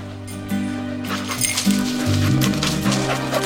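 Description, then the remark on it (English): A search dog, being run to look for human remains, whines and whimpers in drawn-out, wavering cries with a few sharper yelps mixed in, steady over a faint background rustle. No one speaks. “Just going to run this dog to see if we can find any type of human remains that are left.”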